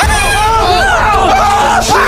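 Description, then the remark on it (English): Loud, high-pitched startled screaming from several voices at once as a raccoon runs in, overlapping yells rising and falling in pitch for about two seconds, intense throughout. “The raccoon just ran in here. I'm gonna act like I didn't scream like a little girl.”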